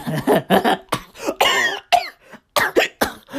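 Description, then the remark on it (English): Hiccups, a quick irregular run of about ten short, sharp throaty bursts with brief gaps between them, fairly loud and with no talking. “I got a fucking hiccup.”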